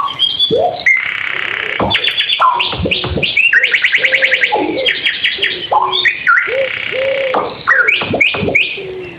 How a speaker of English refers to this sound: That's a synthesizer bird, right? I was going to say that's like the drum track.